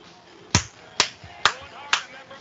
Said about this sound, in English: Yeah. I'm clapping to the high energy.